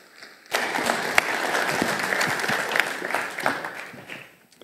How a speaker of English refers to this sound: Now, of course, we're clapping for the succinct and helpful summary and the inspiration, but we're also just clapping for the courage.